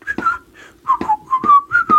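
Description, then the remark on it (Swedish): A clear whistled melody of several sustained notes with gentle pitch slides between them, carried alone without any talking over it. “Och plötsligt började urnan vissla den här "…."”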